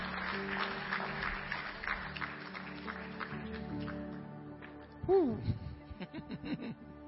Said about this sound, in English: And if you believe it, give God a great big hand clap of praise this morning. Amen.